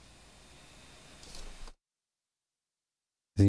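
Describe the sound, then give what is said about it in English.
A fan blowing from a vent directly onto the speaker blows air across the microphone in a soft, steady rushing hiss that swells slightly before cutting off into silence, followed by a brief loud burst at the very end. “This damn fan is blowing directly on top of me.”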